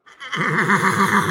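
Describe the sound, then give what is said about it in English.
A person imitates a horse's whinny with a single wavering, trilling vocal call lasting about a second, fairly loud, with no other talking. The call imitates horses heard while running over a crest in the countryside. “We're kind of coming over a little bit of a crest. And I remember seeing some horses and I'm like, okay, that makes sense.”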